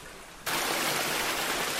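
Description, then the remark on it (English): A small river or stream rushes steadily at an old fording point, a dense, even hiss of flowing water that jumps suddenly louder just after the start and then holds constant, with no voices. “We're just at the side of the river here now, or a stream, it's lovely, and it's not a metre and a half from the edge of the stream,”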